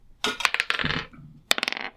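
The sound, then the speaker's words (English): Two quick bursts of dice clattering across a hard table, rolled for a perception check in a tabletop role-playing game, each a rapid cluster of bright clicks and rattles that taper off as the dice settle, fairly loud. “So, roll perception. I'm going to also roll.”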